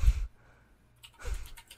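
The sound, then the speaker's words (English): Someone types on a computer keyboard, a few scattered key taps and thumps in two short bursts, fairly quiet, with no talking. “what are you typing?”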